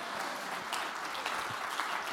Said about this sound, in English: I want you to clap your hands and shout amen.